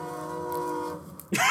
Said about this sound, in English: He leaps out of the way as a train breaks through the door, killing everyone.